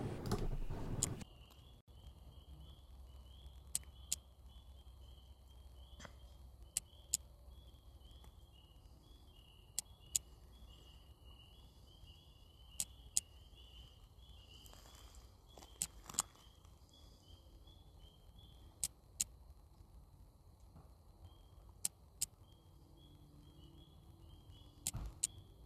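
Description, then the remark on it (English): Faint, sharp taps recur irregularly every second or so over a quiet outdoor background with a steady high-pitched chirring, plus a brief louder bump near the start. “Hear that tapping?”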